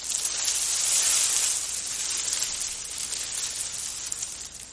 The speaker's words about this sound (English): Okay, that's Legos. What is that? Sifting through the Legos, I guess? Oh, it natural sounds like... Natural sounds of Lego building and sorting? It sounds like bugs. It's supposed to relax you.